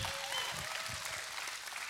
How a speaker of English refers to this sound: Hey, Bethesda Church. How's everybody doing? Go ahead and give God a hand clap. That'll work.